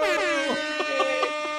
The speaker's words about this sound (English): Hey, let's go. Air horns right here. Let's go.